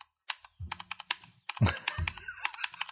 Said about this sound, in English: Well, I can use the keyboard to do some drumming if you want.